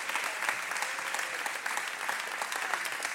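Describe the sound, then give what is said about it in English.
An audience claps hands together to praise the Lord in sustained, dense applause, many overlapping claps forming a steady roar that holds at an even level throughout, with no voices standing out. “Can we clap our hands unto the Lord and give him praise?”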